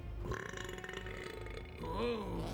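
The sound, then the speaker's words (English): A long, loud burp rumbles for a couple of seconds, deep and croaky, swelling into a stronger bellowing push near the end. “Did he burp and fart?”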